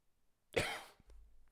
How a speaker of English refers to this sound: That was respectful. You're getting the hang of it. You coughed. That was nice.